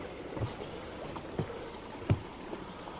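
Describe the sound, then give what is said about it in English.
Steady, quiet water flow runs throughout, with a few soft lapping or splashing knocks. No one speaks. “And hopefully the water isn't too loud.”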